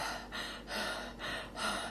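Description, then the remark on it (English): A voice imitates heavy mouth breathing on a prank phone call, four slow, loud inhale-exhale cycles in a steady rhythm, breathy and hissing, with no speech. “That's mouth breathing for you.”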